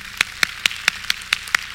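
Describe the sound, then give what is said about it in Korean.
Steady, rhythmic clapping with about eight sharp claps evenly spaced in quick succession, moderately loud, with no talking: an audience at a card magic show applauding a man chosen from the audience. “네, 본인으로 하시고 박수 주시기 바랍니다.”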